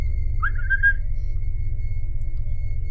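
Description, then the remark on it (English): A person at the doorway of a dark, empty room with closed windows whistles once: a single short whistle that rises in pitch and lasts under a second, over a steady low rumble of background noise. After it fades, only the droning hum remains. “I'm gonna whistle.”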